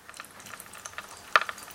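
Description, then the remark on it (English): A full teaspoon of sherbet fizzing up in liquid: a faint, steady crackle of tiny irregular pops, with one sharper click partway through and no voices. “Oh, it's fizzing up a bit now.”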